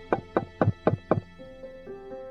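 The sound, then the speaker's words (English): Five firm knocks on Peter's door just after sunset as the Sabbath ends, evenly spaced in a quick steady rhythm, followed by a faint lingering hum. No one speaks. The knocker is a person from the synagogue asking for healing. “Almost immediately, there was a knock on the door.”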